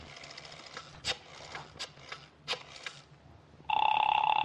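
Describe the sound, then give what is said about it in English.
A few sharp clicks and line noise give way to a steady telephone ring tone heard through the receiver, loud and continuous until the end, with no one speaking. “Ah, it's ringing this time.”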